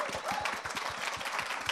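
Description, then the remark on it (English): An audience at a film show recorded in Cannes breaks into steady applause for the panel guests, a dense wash of many hands clapping at once with a bright, crackling texture that holds at an even level throughout. “Round of applause.”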